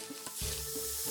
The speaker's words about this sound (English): Sorry, I fizz a lot when I'm nervous.